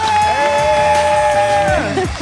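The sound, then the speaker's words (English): A loud crowd cheers, with one sustained high whoop that slides downward near the end. Scattered clapping and shouting run underneath the whole burst. “Oh, that was applause!”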